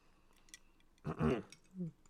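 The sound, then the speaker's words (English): A short slurping sip of a drink, preceded by faint mouth clicks and followed by a soft, low gulp, with no one talking. “Hang on, I'm taking a sip here.”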